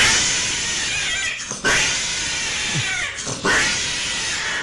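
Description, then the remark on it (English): A cat yowls loudly and continuously in a YouTube video called 'cat wrong hole', its harsh drawn-out wail breaking briefly around two points before surging again, raw over a noisy background. “Okay, if you go on YouTube and just type in cat wrong hole. Yeah, yeah. You will get this noise.”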